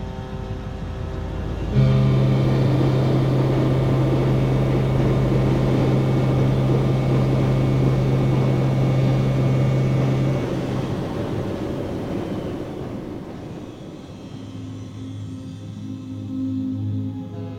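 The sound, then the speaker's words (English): A loud, steady boat engine and shipping noise drone with a strong low hum and broad rumbling noise runs for several seconds, then fades to a quieter, lower rumble with a different tonal hum. No voices. “They cannot go deeper, and most animals can also not go into higher frequencies to escape the boat noise and the shipping noise and other types of noise we make for communication.”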